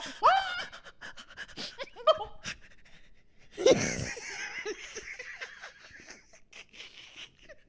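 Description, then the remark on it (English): A person imitates a dog panting with quick, breathy huffs, mixed with a few short bursts of laughter and a louder burst partway through. “Not the panting.”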